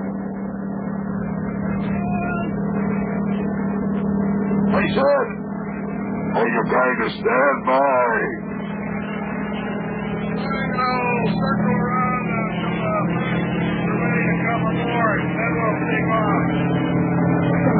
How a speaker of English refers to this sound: And that helicopter is bringing its mail from the United States. Helicopter, here it comes. Ahoy up there! Aboard the helicopter!